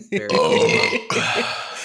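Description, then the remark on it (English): A loud, drawn-out burp rumbles, with a second gravelly belch following right after a brief break. “I'm on fire with the burp.”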